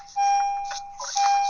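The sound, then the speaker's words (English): A car's warning chime rings as a steady, high electronic tone that cuts out briefly and resumes, with bursts of rustling and thumping from someone climbing in. No one speaks. “Sorry, somebody getting in the car.”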